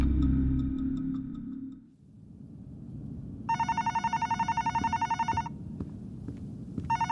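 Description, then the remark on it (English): A hotel room telephone rings with a call from the front desk, a rapid, trilling electronic bell lasting about two seconds, clear over a low background rumble, with a few ticking sounds before it. “Shortly after I had read the letter, I received a phone call from the front desk.”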